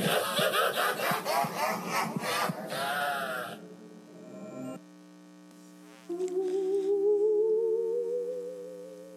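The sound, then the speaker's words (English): In a spooky audio piece, a door creaks slowly open with harsh, grinding screeches in quick pulses, then a long, wavering squeal that climbs gradually in pitch. Loud, with no voices. “The door was opening slowly and screeching, and it was followed by a maniacal laugh.”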